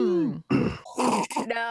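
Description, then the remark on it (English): After trying to slurp a drink too hard, a strained, voiced groan breaks into a short fit of harsh, raspy coughs, three or four ragged bursts in quick succession with no clear words. “Ugh, tried to slurp too hard, coughed.”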